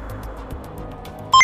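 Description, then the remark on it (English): A low, muffled rumble with faint ticking gives way to a sudden, loud electronic beep at the very end, a bright synthetic computer tone that cuts in abruptly. “Calculating computer activated. Computers. Beeps. Space! Boops.”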